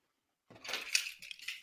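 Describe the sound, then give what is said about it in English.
A dog named Kenobi licking her paws: about a second of quiet, rapid wet smacking and clicking, ending in a sharper, louder burst. No one talks. “She's licking her paws.”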